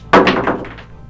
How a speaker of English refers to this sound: And he's going to swing that battle axe. And we're going to roll both these dice, because this is just weird and awkward. Lopsided.